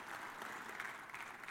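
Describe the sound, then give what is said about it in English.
Steady applause from an audience giving thanks for and welcoming a new member, a dense wash of many hands clapping at an even, sustained loudness with no voices standing out. “Can we give thanks for our new brother with our applause?”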